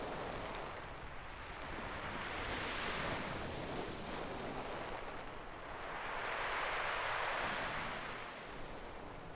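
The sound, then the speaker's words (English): Sea waves roll in and crash in two slow, swelling surges over a constant roar of surf below the cliff at the deep gash of the Cave of Nurong, with a breath of wind across the microphone and no voices. “Above the black stone, with a winding kingdom and the sea, lies the deep gash in the cliff, the Cave of Nurong.”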